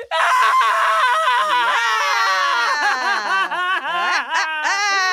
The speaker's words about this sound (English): Hey, who's screaming?